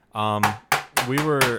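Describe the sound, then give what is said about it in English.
Four heavy knocks on a door land in an uneven rhythm, each a sharp thud with a short ring, over a low, steady humming tone that runs through the whole moment. “Somebody is knocking.”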